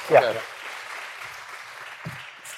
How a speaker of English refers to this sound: But before that, how about a big round of applause for our panelists? Yeah, there we go.